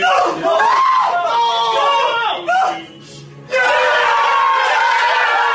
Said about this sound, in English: The cheering. And then they realize they didn't get it.